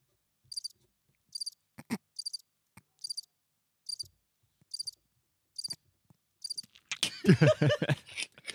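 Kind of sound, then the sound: insect, cricket chirping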